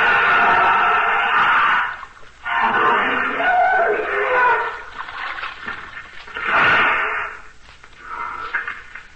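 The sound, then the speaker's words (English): An elephant heaves itself out of river water to the bank after its bath, sending loud surges of splashing and streaming runoff in several heavy bursts separated by brief lulls. “Teela, go to the bank, or indeed I will have to punish you. Get out of the river. You have had enough bath.”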